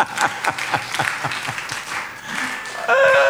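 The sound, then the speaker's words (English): A crowd at a church service claps for Jesus together in a quick, steady rhythm, the sharp hand claps landing about four times a second, before raised voices join in at the end. “Clap for Jesus.”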